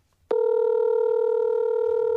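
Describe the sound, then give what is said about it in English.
A steady electronic phone tone switches on abruptly after a brief silence and holds unbroken to the end, loud, from a phone call being placed on speakerphone. No one speaks. “Your phone shows phone numbers when you call them.”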